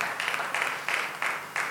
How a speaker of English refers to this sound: That's a good place to clap for your church.